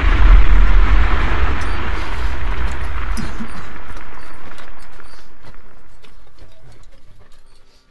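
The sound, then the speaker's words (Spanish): A loud, deep explosion, the first of a guerrilla attack on a village at 5 in the afternoon, booms right at the start, followed by a long rumbling roar that slowly fades away over several seconds. “Entrada a las 5 de la tarde, Lorena se adentra en su casa para limpiar su cara y manos, cuando se escucha en la primera explosión.”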